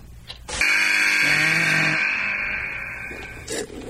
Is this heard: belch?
no